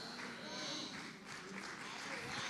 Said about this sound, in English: I'll let you swallow that, because your delayed clap indicates you are still trying to process what I just said.